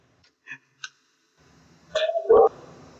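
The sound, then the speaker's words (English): A dog barks excitedly: two short, sharp yips followed by a pair of louder, rapid barks, with no talking. “I was about to speak, but my dog is like going insane right now.”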